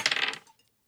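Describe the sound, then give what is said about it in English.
Dice clatter briefly across a hard tabletop, a quick burst of bright rattling clicks that settles and fades within half a second, fairly loud, with no talking. “Even when he's not rolling the dice, it's like it's bad rolls.”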